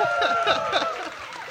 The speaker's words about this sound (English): Google's AI is really good at providing that artificial crowd noise for us now. It's amazing. But we're at South by Southwest.